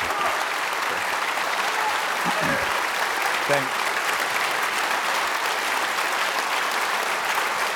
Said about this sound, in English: Still clapping like that at the end.